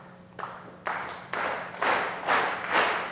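An audience claps together in a steady rhythm as part of a demonstration of how a laser works, with about seven loud, even beats over a few seconds and a broad wash of many hands on each beat.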